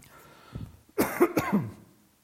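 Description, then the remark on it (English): A brief fit of harsh coughing from a person who got water down the wrong way: a small hacking sound, then a cluster of three or four rough coughs in quick succession, tapering off into quiet. “Water down the wrong way.”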